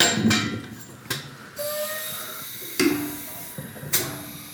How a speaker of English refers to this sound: You know, so I'm just gonna pour one here because too much talk, not enough beer.